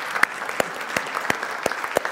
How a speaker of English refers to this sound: Would you give them a round of applause and tell them we're glad that they're joining?